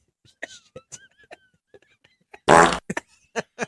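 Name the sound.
imitated fart sound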